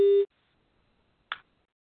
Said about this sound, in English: Somebody's phone is ringing. Oh, no. Oh, I'll try to find it.